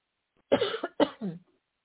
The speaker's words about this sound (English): Now I want to start coughing and shit.